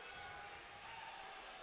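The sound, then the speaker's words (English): A large crowd at a basketball game with Nebraska lets out a steady, sustained boo, a dense wash of many voices, holding at an even level throughout the short moment. “The crowd booing a little bit.”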